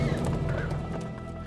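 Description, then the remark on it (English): Horse hooves clip-clop in a steady, unhurried rhythm, a white horse ridden by Joan of Arc in armor, several distinct hoofbeats over a low, continuous background rumble. “Just picture Joan of Arc, suited in her armor, riding a white horse, carrying a large fork-tailed linen banner emblazoned with the French fleur-de-lis.”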